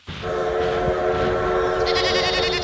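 A loud, steady train whistle blares alongside a bleating goat-like animal cry, both short comedic sound effects overlapping for a couple of seconds with no talking.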